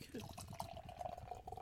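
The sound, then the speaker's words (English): Hazy, cloudy beer pours steadily into a glass, a continuous liquid gurgle with a faint rising ring as the glass fills, with low voices murmuring underneath. “Ooh, good pour.”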